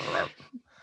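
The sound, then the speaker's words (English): A person imitates a dog growling as a sound effect for being chased by a dog: a short, breathy snarl, trailing off into a few quiet grunts and breaths in under a second. “I'm getting chased by a dog.”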